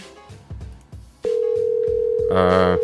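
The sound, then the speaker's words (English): A loud, steady electronic phone tone starts suddenly and holds without a break, as an outgoing call rings through, after a second of muffled low voices and thumps. “I just remembered, if you dial 6 in front of it, it'll probably get him to answer more.”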